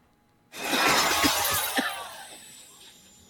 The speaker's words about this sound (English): Is everyone okay? What happened? Did anyone see? Someone drove a hot dog-shaped car through the window.